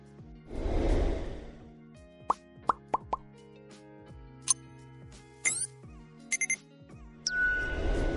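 A notification bell sound effect: a soft whoosh opens a string of quick, bright pops and clicks, followed by a few ringing bell-like dings, then another whoosh to close. No one speaks.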